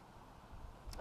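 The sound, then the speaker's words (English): A single dog bark rings out near the end after a stretch of low, quiet background noise; there is no talking. “Who likes to hear a dog bark like that?”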